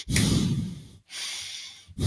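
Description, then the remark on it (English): Someone breathing hard and heavily, with loud whooshing breaths following one another in a quick, steady rhythm and no talking. “Nigga just breathing hard as hell.”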